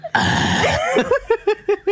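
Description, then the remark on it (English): A voice imitates loud, exaggerated gulping like a little kid drinking from a cup: a harsh throaty rush, then about five wet gulps in a steady rhythm, each short and punchy, with no talking. “How do you swallow so loudly?”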